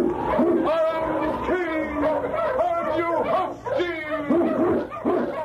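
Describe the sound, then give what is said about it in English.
A pack of Eskimo sled dogs, led by King from the radio program Challenge of the Yukon, barks and howls together, their overlapping yelps and rising, wavering howls repeating steadily and loudly throughout, with no pause. “King, the swiftest, strongest of Eskimo lead dogs, blazes the trail through storm and snow for Sergeant Preston as he meets the Challenge of the Yukon.”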